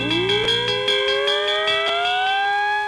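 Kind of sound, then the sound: signal or alarm, fire engine siren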